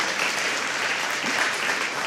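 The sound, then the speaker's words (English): An audience claps steadily, a dense, even wash of many hands that holds for about two seconds without building or fading. No distinct voices stand out from the crowd noise. “You should be cheering right now.”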